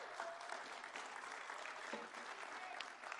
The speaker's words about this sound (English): you can give him a round of applause for that.